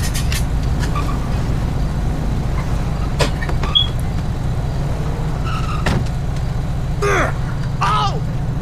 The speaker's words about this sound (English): Tow truck, what the heck?